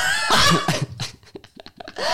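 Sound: coughing fit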